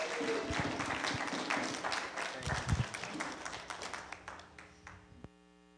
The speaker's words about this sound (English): So, guys, I know you just clapped, but give him a clap as he comes up.